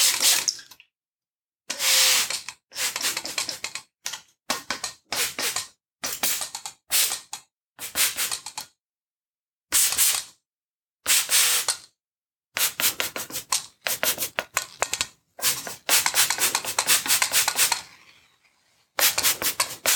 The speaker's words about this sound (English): So I'm going to work on your arms and your elbows. So I'd just like you to imagine all the muscles in your biceps, triceps, the forearms. Just imagining your arms getting softer and looser as I spray them down now.